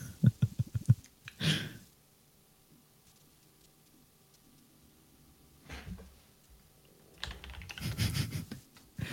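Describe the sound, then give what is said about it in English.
Bursts of computer keyboard typing, quick clicking keystrokes separated by quiet pauses, with a longer flurry of taps near the end and no talking. “Typing, looking down at keyboard, typing”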